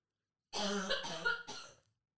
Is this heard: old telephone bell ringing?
no